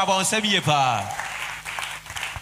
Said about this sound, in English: If I clap, clap.